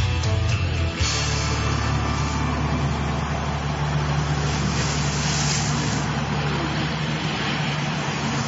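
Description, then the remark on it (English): Loud, continuous roar of NASCAR stock car engines, a dense droning wall of motor noise with steady low tones holding for several seconds, unbroken, with no voices. “Vroom, vroom, vroom, gentlemen, start your engines. I love NASCAR.”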